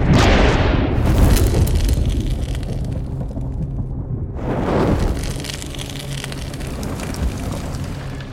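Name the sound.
thunder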